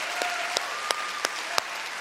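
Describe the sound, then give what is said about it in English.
A church audience applauds for what God is doing in the Middle East, a steady, hissing wash of clapping with a few sharp, evenly spaced louder claps standing out above it and a faint sustained tone underneath. No one speaks. “If you want to clap for what God is doing in the Middle East, I want you to put your hands together.”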